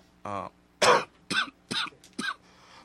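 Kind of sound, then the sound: human body sound, coughing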